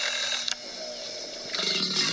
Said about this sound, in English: To attract mates and scare off rivals, male alligators bellow by sucking in air and blowing it out in deep roars.